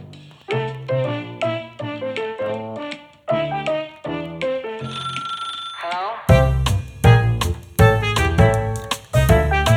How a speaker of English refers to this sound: Beautiful ringing this morning, very melodic. Thank very you. You know, like Vic and Bob's club singer character. It was that sort of vibe, which I'm well on board for.